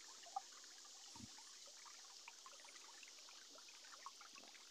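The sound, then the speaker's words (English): A gentle mountain brook trickles steadily, a soft continuous babble of running water with small splashing bubbles, fairly quiet and with no voices. “May you enjoy the gift of the mountain, river, as the trickling brook slowly flows, giving life to so many plant forms, life forms”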